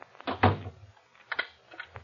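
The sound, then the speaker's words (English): A door swings shut with a solid thud, followed by a few softer knocks and clicks as it settles, with no one speaking. “Close the door.”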